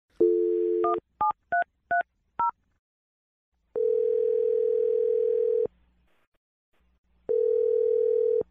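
A dial tone gives way to a quick run of five touch-tone beeps as a number is dialed, followed by two long, steady ringback tones separated by a pause. No one speaks.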